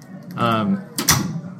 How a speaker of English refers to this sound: Let's close that door so when people come in, we're good.